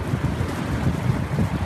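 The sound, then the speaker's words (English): Strong gusty wind near a waterspout coming ashore roars and buffets the microphone in a steady, loud low rumble, with no voices during the short stretch. “You feel the wind?”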